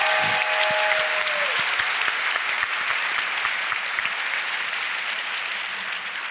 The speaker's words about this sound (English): So if we could all give a round of applause to Gary O'Reilly. Gary.